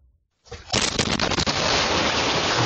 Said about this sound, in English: It's the terrifying moment a house explodes, raining debris on the entire neighborhood. You can see the flying wreckage hitting this house down the block and the screams of the terrified people inside. The devastating blast could be heard across town